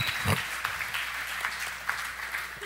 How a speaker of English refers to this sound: Give yourselves a big round of applause this morning.